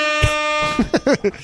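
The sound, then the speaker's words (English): A DJ air horn sound effect blares one sustained, buzzy, brassy blast for under a second, then a few short voiced sounds follow right after it. “I don't know if the DJ air horn effect is really the thing for when someone dies, but what the hell?”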